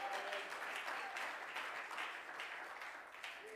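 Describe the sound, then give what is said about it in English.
A church audience claps steadily to praise God during a sermon, a dense, continuous wash of hand claps with no gaps, fairly loud throughout, with faint voices calling out beneath the applause. “Oh, clap your hands and praise Him this morning.”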